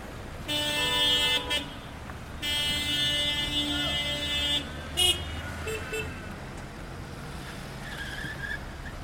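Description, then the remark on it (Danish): A couple of cars roll through the entrance gate into a refugee camp, sounding their horns in two long, loud honks, the second stretching about two seconds, followed by a few shorter toots and engine rumble fading into the background. “Et par biler kører gennem porten og ind i lejren.”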